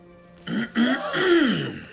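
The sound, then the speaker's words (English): A man, a deacon in a church, clears his throat in a few rough, voiced bursts, with a short break then a longer drawn-out rasp. No one speaks. “Clara began to speak, but was cut off by the sound of Deacon James clearing his throat.”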